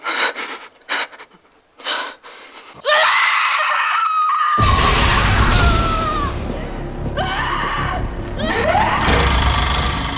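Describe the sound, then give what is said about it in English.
A harsh, drawn-out scream from the character Bix during a torture scene, after headphones are put on, rises after a few sharp breaths and gasps, joined by a loud, rumbling roar beneath it as the cries continue in strained, anguished bursts. “to have it go silent, except for Bix's breath and then the scream after they put the headphones on, that I thought that was a great choice.”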